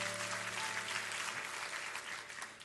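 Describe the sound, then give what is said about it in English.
An audience claps their hands in a steady, dense wash of applause that holds at an even level for a few seconds, with no voices standing out. “Clap your hands and you can be seated.”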